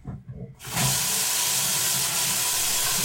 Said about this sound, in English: your sink sounds very aggressive. Yeah, all of the water here is super high powered. It's also so much warmer than any sink ever reasonably needs to be.